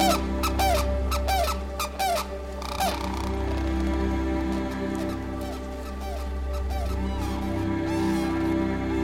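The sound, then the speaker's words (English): Calls of two endangered crane species in the DMZ between North and South Korea ring out repeatedly, a flock of loud, trumpeting honks and squeaky whoops overlapping over a steady low rumble, with no talking. “Today, we're heading to the DMZ between North and South Korea, where two of the world's most endangered crane species have found an accidental bird sanctuary.”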